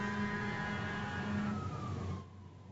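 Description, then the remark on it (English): A fire truck siren wails steadily amid rumbling traffic, its tone sliding downward before fading away near the end as the truck passes by. “Well, there goes the fire truck.”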